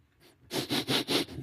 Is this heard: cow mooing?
no